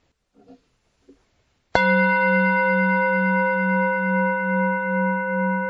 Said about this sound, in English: I ring the gong once to let us know we're beginning and twice to let us know when the meditation is over.